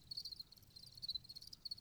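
A chorus of crickets chirps in a steady, high-pitched pulsing trill, fairly soft and continuous, with no voices and only a faint low rumble underneath.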